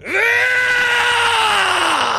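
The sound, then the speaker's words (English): A person lets out one long, loud roar while voicing a character entering a full-on rage, a sustained raspy vocal bellow that holds steady for about two seconds before dipping in pitch and trailing off, with no talking. “And I am going to let out a loud as I can roar as I am going to enter a full-on rage.”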